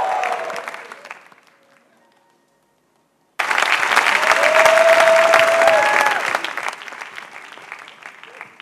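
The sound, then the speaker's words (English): A church audience claps and cheers, giving Jesus a shout of praise; a first burst of applause dies away into a brief silence, then loud clapping with shouting, whooping voices erupts abruptly and carries on, easing slightly near the end. “Give Jesus a shout of praise in this house.”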